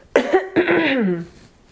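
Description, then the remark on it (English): A person clears their throat: a short rough hack followed by a longer, drawn-out voiced rasp that trails off, with no speech. “Let me clear my throat here.”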